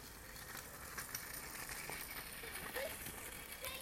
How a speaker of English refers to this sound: Oh no, on their scooters. A couple of kiddywinks.